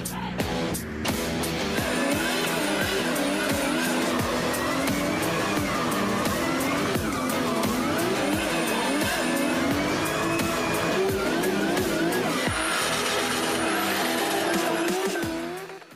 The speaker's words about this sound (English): He drove in formation with the other guy, like a real race, after driving the car in 4 laps.